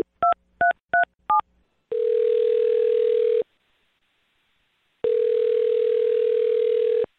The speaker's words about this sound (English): All right. I'm going to dial her phone number right now, see if we can get her on the phone and find out what happened. Here we go.